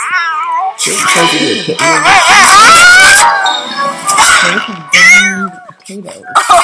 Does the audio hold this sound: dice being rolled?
no